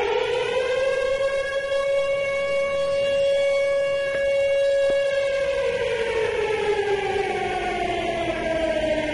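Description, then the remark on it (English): A loud, steady siren sound effect for the Fez Watley versus Eastside Dave Siren Series Challenge wails on one sustained pitch with rich harmonics, then slowly slides downward toward the end, filling the whole clip with no voices. “And that siren was just to let you know it is not happening right now.”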